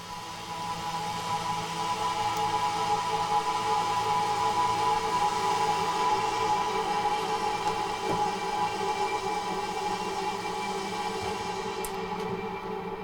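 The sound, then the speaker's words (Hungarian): A synthesizer drone blends steady white-noise hiss with sustained sawtooth and triangle oscillator tones that do not go through a filter, holding an even, rumbling texture at constant loudness for about thirteen seconds with no voices. “Hát gyanítható, hogy itt is fehér zaj van a buliban, de itt azért van mellett egy fűrész fogom, egy háromszög oszcillátor is.”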